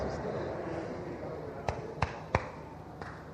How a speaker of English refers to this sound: Somebody is interrupting. Somebody is clapping. Hey, wait.